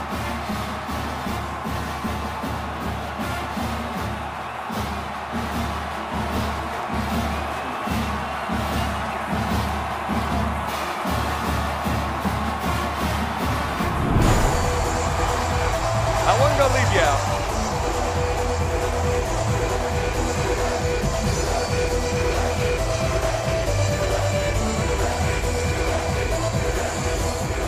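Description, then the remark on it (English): A large stadium crowd roars and cheers steadily as the football team takes the field just before kickoff, the noise swelling louder and brighter about halfway through and staying dense and continuous. “Everybody gets real excited when the team takes the field.”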